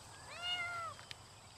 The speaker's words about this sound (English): Is that a cat in there?